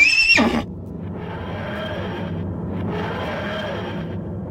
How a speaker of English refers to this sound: If there is not currently a horse in the TARDIS, there's a horse in my heart. There's a horse loose inside the TARDIS.